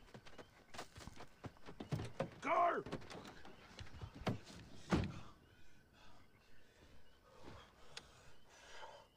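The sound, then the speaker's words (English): A locked door is yanked and rattled, with several loud clunks and thuds against the frame, followed by quieter shuffling and faint muffled voices. “Open the door. Open it. What are you doing? Unlock it. I can't unlock it. What are you doing, man? Why are you pulling?”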